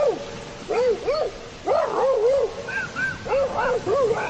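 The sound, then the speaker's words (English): Rapid bursts of yapping barks and whiny yelps tumble over one another like a scuffle between dogs, fairly loud, likely a person's voice imitating a dogfight. “He got into a dogfight in the sub with the other dogs that were on it.”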